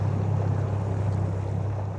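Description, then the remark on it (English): A boat motoring along the Connecticut River estuary past dense patches of Hydrilla: a steady, low engine drone with a continuous rush of water and wind noise, even in loudness throughout, with no voices. “We have to avoid this with the boat, because if we get in it, we will have a very difficult time getting the boat out of it.”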